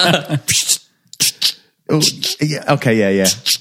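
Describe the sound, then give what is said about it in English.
A voice imitates scissors cutting through wrapping paper: a few short, hissy snipping bursts with pauses between, followed by a longer voiced swoosh, fairly loud. “That was the sound effect for when you use scissors to cut through gliding, a wrap of paper.”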